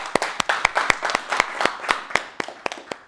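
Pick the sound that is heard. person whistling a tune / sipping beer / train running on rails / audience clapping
audience clapping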